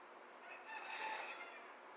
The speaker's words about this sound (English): So I'm guessing this rooster is my guest star. It's not even like the crack of dawn, early morning. It's about 9:30, and this motherfucker is chirping right now. Wondering if he's gonna go hard again.